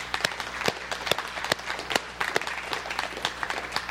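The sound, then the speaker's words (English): An audience applauds to thank a woman, many hands clapping in a dense, uneven patter at a steady moderate level, with a few sharper claps standing out and no voices above it. “Well, we are really grateful for you, and so let's give her a clap.”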